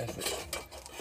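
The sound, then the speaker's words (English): Metal kitchen utensils clink and scrape against each other in a continuous rasping rustle, like someone rummaging through a drawer of cutlery and ladles. “Is this a ladle? Okay, I thought this one was a ladle.”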